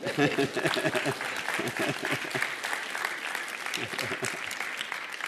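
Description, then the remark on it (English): An audience claps steadily for several seconds, a dense, even patter of many hands with scattered voices calling out beneath it, holding at a fairly loud level throughout. “Anybody going to clap for me this morning?”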